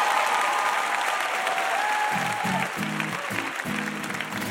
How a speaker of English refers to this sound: How about a huge round of applause for Wesley Morris?